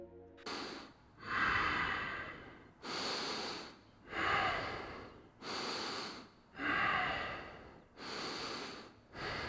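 A woman breathes slowly and heavily in sleep, with about five long, noisy inhale-exhale cycles at a steady rhythm, with no talking; a recording taken a couple of years earlier.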